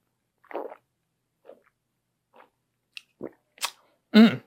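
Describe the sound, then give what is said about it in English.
Sipping from a drink, a series of short quiet slurps and mouth sounds with gaps between them, ending in a louder gulp or breathy swallow. No one speaks. “Let me take a sip.”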